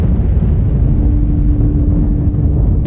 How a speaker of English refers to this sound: First, of course, there's the blast.